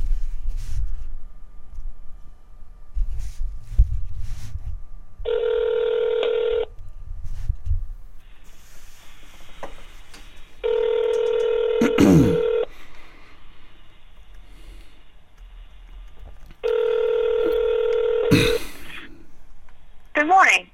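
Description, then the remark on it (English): A 900 number for a phone service called Medium Line is dialed after some low fumbling noises at the start, then the line rings out three times in steady, evenly spaced bursts; the ringing is clear. “Anyway, so the service is called Medium Line, which I guess is pretty straightforward, and it's a 900 number, so let's just give it a call here.”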